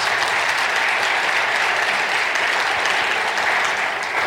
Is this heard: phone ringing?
no